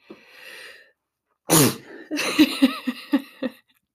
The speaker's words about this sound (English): Sneezing and all. Sorry if I just blew your eardrums.